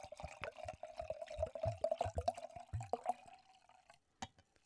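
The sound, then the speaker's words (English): A drink is poured into a glass in a tall pour, a steady liquid stream with gurgling splashes and a rising tone as it fills, ending with a faint clink after a brief pause. “Yeah, let's let this one hit the glass.”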